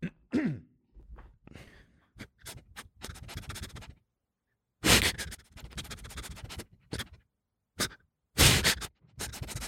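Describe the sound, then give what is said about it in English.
A person mimics a dog sniffing with quick, breathy nasal bursts in uneven clusters, pausing briefly between rapid snuffling runs, with no talking. “This is a dog coming up and sniffing you.”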